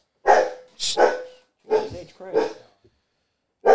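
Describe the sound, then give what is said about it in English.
A dog named Bowser barks repeatedly, several sharp, loud barks in uneven bursts with short pauses between them, and no other sounds alongside. “Yeah, while he's barking, I'm gonna.”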